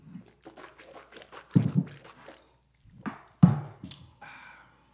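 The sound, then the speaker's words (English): Wet swishing and slurping of water being rinsed around a mouth during a tasting, in a quick irregular series of bursts with a couple of louder splashy gulps, and no talking. “So you might want to rinse your, you know, have a okay, little good idea. Water rinse or oh, something.”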